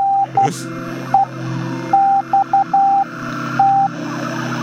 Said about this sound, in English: That is not accurate. That is accurate. That's accurate Morse code? That is accurate Morse code for NEXT.